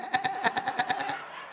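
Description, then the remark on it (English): A person imitates a goat's bleat, producing one quavering, strongly vibrating 'baa' that lasts about a second, fairly loud, before cutting off into quiet. “And they called her Goat. Not everybody went, bah! But she did.”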